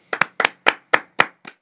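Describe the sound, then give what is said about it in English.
Sharp audience hand claps welcoming a guest onto a show, in a steady rhythm, about six quick double-claps spaced evenly over under two seconds, crisp and moderately loud with no voices. “Please clap for him.”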